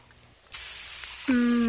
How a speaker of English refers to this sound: Let me spray your hair one more time